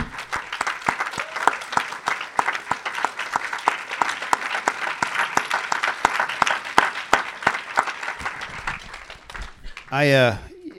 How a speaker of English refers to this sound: And I just wanted to applaud all the moms in this place that are so fantastic.